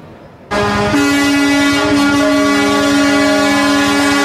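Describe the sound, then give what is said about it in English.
A sudden wall of air horns from about 230 logging trucks blares at once as the trucks roll through Vancouver, British Columbia, driven by protesting logging truck owners and contractors. Many overlapping sustained tones hold loud and steady, forming a dense, continuous honking chorus. “It's amazing how loud 230 truckers can be when they're all on their horns at the same time.”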